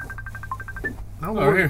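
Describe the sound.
A phone rings with a quick run of short, evenly spaced electronic beeps for about a second, then a person starts talking over a low background hum.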